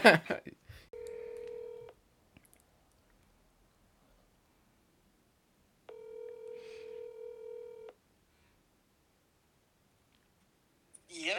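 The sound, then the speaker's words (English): A phone line rings out on an outgoing call to a friend: two steady, buzzy ringback tones, each about a second long, separated by several seconds of silence, with short bursts of noise at the start and end. “I want to phone in a friend.”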